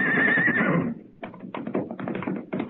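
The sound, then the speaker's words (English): A horse that has seen people lets out a loud, quavering whinny, then its hooves pound away in a quick, uneven gallop as it runs off, clear, with no voices. “His horse saw us and ran.”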